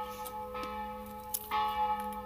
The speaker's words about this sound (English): After the bell.